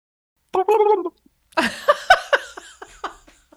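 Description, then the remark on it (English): A voice imitates a turkey gobbling: a short nasal call, then a loud, rapid warbling burst of throaty pulses that trails off into quieter, laugh-like bursts, alone. “That was a turkey, guys. That was a turkey.”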